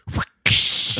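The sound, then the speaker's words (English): A person vocally imitates a whip crack: a short voiced "whoo" rising in pitch, a brief pause, then a sudden loud, hissing "tssh" that holds steady to the end. “And it was the whip noise that caused him to really rethink the whole relationship.”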